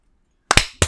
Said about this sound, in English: And then we're going to sync up. So I'm going to count 1, 2, 3, and then on go, everybody clap together.